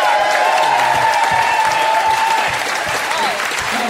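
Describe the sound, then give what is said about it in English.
An audience at a live auction applauds loudly and steadily for Ben Fordham after an item sells for $500, dense clapping filling the whole stretch, with a few cheers and whistles rising above it and voices faintly mixed in underneath. “And a big round of applause for Ben Fordham.”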